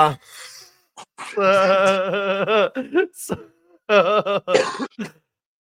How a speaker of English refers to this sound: I don't know why today. Every time I laugh, I cough.